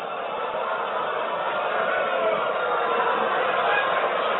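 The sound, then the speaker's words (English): A large NAACP audience booing Mitt Romney during his address to them, a dense, steady roar of many voices that stays loud and unbroken for the whole few seconds, with no single speaker standing out. “I guess Romney forgot to rub the tree stump before walking out to address the NAACP and got booed for what the Afrocentrists claim to love so much.”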